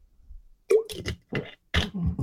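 Someone sips water: a quick wet slurp followed by a few short gulping, swallowing sounds in an uneven rhythm, moderately loud with no talking.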